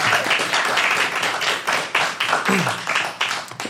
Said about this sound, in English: Odysseus. Well done, give him a round of applause here, everyone.